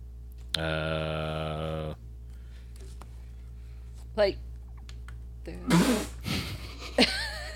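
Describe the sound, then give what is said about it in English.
A person gives a sharp sneeze onto a guitar near the end, followed by a brief breathy rustle. Earlier, a sustained ringing tone sounds for about a second over a low steady hum. “I sneezed on my guitar.”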